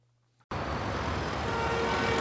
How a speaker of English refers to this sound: Have you ever been driving home and you run into that lovely rush hour traffic?